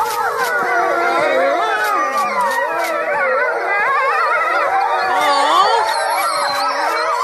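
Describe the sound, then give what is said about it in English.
A pack of European wolves at a safari park in England howls together during a fire alarm test, many overlapping voices rising and falling in long wavering tones, loud and continuous, with a faint fire alarm tone beneath and no talking. “So a pack of European wolves at a safari park in England start howling every time there's a fire alarm test.”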